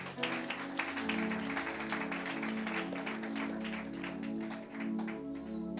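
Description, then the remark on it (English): A crowd at a preaching service claps their hands steadily for several seconds, the dense patter of many hands over a low sustained musical tone. “You can clap your hands, eh?”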